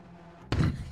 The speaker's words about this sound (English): Slam the door.